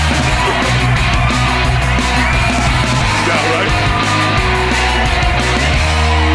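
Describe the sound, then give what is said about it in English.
A loud, continuous roar of a crowd screaming and cheering for more comedy from comedian Marcus Hawkins fills all six seconds, dense and sustained without pause, with overlapping yells rising out of the wash of noise. “Crowd, you hear the metaverse. The metaverse is screaming for more comedy from Marcus Hawkins himself.”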